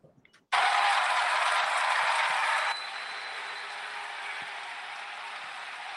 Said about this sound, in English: It's funny. It's funny to hear boos, but I also hear clapping. That's interesting. That's interesting.